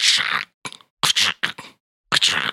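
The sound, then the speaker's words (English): A cleaver chops through bones on a wooden block in about five sharp, crunchy strikes at an irregular pace, each a loud burst of splintering crackle with a dull knock beneath. “All you hear is the repetitious thud, thud, thud of the cleaver hitting the wood block, chopping up the bones as they crunch.”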